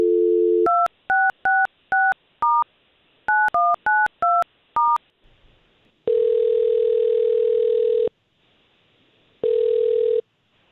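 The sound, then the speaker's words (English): A brief dial tone gives way to a quick series of touch-tone keypad beeps as a woman's phone number is dialed to call her, then two long ringback tones separated by a pause, all clear with no talking. “Let's see if we can't call her now and we'll talk to her first.”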